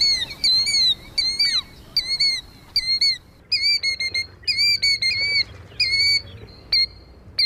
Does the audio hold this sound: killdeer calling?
yes